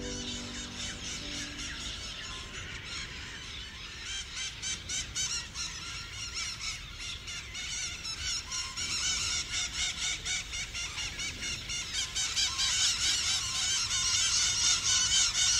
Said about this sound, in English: And yet, they come back, and today there are more than 2,000 squawking birds spread around Messiah's craters.